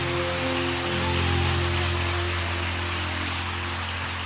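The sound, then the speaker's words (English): A church audience claps in praise to God: a dense, steady wash of many hands clapping at once, sustained without a break, with a low held musical tone humming underneath. “Let's lift up a hand clap of praise to our God who is so good.”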